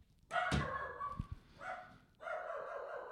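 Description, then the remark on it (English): A dog barks loudly, a few sharp bow-wow barks in quick succession with short pauses between, with no talking over them. “And now he's fucking barking.”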